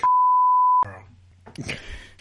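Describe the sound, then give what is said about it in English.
A loud, steady censor bleep tone lasts under a second, cutting off speech; a man's voice then resumes talking right after the bleep ends. “I don't want her coming to me. I'm just going to beep it.”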